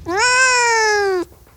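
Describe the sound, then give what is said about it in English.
A single drawn-out meow from Joni, a cat, loud, holding a steady, slightly falling pitch for over a second before cutting off sharply. No one speaks. “Joni, do you think that Cats the Musical is an accurate portrayal of your species?”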